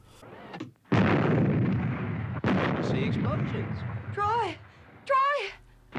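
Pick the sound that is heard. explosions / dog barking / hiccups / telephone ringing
explosions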